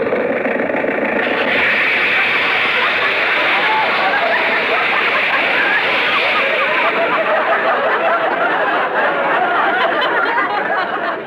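The radiator of Mr. Benny's car blowing its cap: a loud, steady rush of hissing steam that sustains without a break for about eleven seconds over a rough engine rumble.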